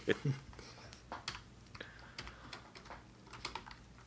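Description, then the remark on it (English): Someone types on a computer keyboard, a brisk, irregular patter of clacking keystrokes with short pauses, over a faint low hum. “Can I use the keyboard for a moment?”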